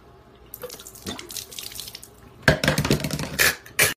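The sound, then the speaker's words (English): Water pours and splashes in uneven, gushing bursts, growing louder and messier toward the end, with no voices, as a person drinks a glass of water while doing a handstand. “my talent is that I can drink a glass of water while doing a handstand.”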